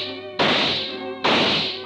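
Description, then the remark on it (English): Two loud, sharp gunshot blasts about a second apart, fired at point blank at an old man slumped in his chair in a room with a radio blaring, each with a brief rumbling decay, cutting over a steady droning tone that plays throughout. “The radio blaring away in the corner, loud enough to cover even the sound of a gunshot.”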